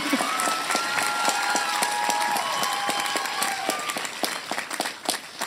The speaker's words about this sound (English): You can clap.